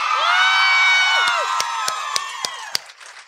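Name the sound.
audience cheering and whooping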